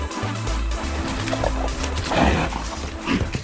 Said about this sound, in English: It was a brown bear.